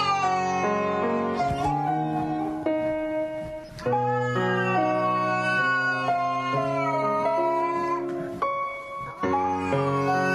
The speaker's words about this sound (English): He'll take a howling cat and play piano with it, and it sounds like a sad song, like this.